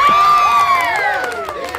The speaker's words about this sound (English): Crowd goes wild at that.